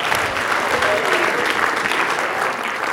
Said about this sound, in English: It's good to see you guys today. And I heard some cheers for Wisconsin. Yeah? Oh, wow. Wow.